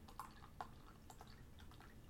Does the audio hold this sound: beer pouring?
yes